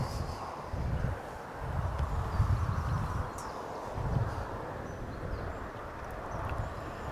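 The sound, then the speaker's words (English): Gusty wind buffets the microphone in repeated low, rumbling surges on a breezy day at an allotment, over a steady wash of traffic noise carried along on the wind. No one speaks. “Quick weather watch, breezy, as you might be able to hear, and a lot of noise carrying along on the wind somehow. From the traffic.”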